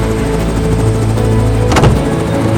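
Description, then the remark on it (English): A helicopter approaching a rooftop, its engine droning steadily, loud and low-pitched with a layered mechanical hum, and a brief sharp burst of noise cuts through shortly before the end. “Yes! A helicopter! I'm saved!”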